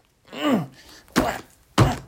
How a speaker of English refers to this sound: There. I've knocked that stupid fence down.